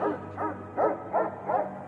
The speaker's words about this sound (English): It let out an unearthly howl, and it started barking and circling the tree.